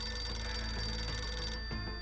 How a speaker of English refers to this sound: On April 10, 1973, Nixon's Oval Office phone rang. For once, it wasn't about Watergate.